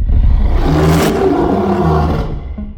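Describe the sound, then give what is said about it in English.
A loud, deep, continuous roar made from lion and tiger growls played in reverse on tape, mixed with low human grunts, filling about three seconds with a rumbling, growling tone and no speech. “Then what they did was reverse the tape and sprinkled in a few human grunts. Here's our modern recreation.”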